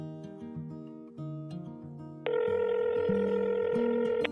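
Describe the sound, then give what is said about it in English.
A telephone being dialed and then ringing: a loud, steady electronic phone tone cuts in about halfway through, over a low, shifting musical-sounding tone bed, with no talking. “I want you to hear a phone call from last winter.”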